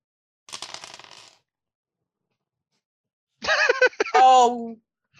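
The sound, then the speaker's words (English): Dice, including special dice, clatter and rattle briefly across a surface in a quick burst of clicks as they are rolled for a strength roll, followed after a pause by a short stretch of a voice speaking. “Remember, you always roll your special dice as well.”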